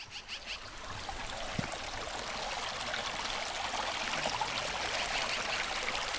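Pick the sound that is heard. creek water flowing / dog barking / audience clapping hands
creek water flowing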